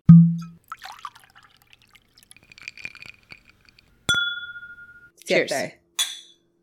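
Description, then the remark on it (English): Drinks trickle and splash into Yellow Rose glasses, then the glasses meet in a single bright clink that rings out in a toast, followed by brief voices. “I will say we're trying these out of our beautiful Yellow Rose glasses.”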